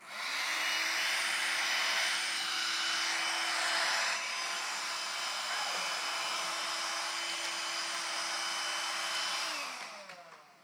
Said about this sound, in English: That was fun. I wanted to do that. Okay, and why did I bring the hairdryer?